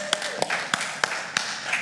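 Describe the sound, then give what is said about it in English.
An audience claps hands for a woman in a steady rhythm, about five sharp claps roughly a third of a second apart, with a murmur of voices underneath. “Just give her a hand clap.”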